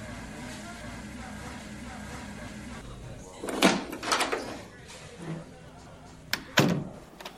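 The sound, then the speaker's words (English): A front door opens with a rattling, scraping clunk, followed a couple of seconds later by two sharp knocking thuds as it shifts or latches, over a faint steady background hum. “Go to the front door and don't make the mistake of trying to slam the door on me.”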